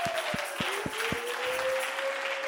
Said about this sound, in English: Hallelujah. Come on, everybody, clap your hands.